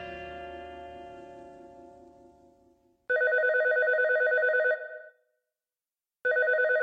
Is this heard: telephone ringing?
yes